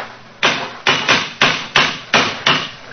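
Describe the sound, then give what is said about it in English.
A cane knocks hard against stonework seven times in a quick, slightly uneven rhythm, each sharp, loud crack ringing briefly before the next. No voices are heard. “It's a hard knock.”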